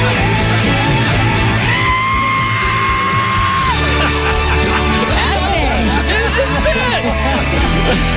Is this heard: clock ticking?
no